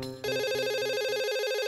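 A phone rings on an outgoing call, a steady electronic ringback tone with a fast pulsing warble, loud, starting after a brief quiet moment and running without any voices.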